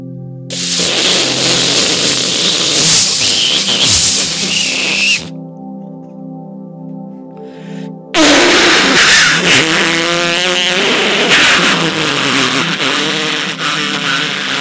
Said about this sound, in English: Starting a boat.